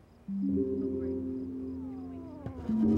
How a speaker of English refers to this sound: What's that noise? Just Lakshmi. Who? The cat. I named her after my favorite Hindu goddess.